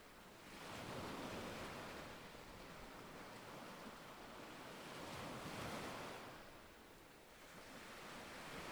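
Ocean waves wash onto a black beach covered by small black rocks instead of sand, in a steady, rolling roar, swelling and easing in slow surges with a broad hiss of surf and some wind, no voices present.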